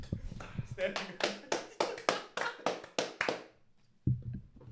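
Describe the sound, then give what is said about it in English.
A quick burst of hand clapping in applause for tennis player Nick Kyrgios reaching the Wimbledon final, roughly a dozen sharp, evenly spaced claps, with voices talking just before and right after. “But round of applause. Actually, standing ovation. Standing ovation.”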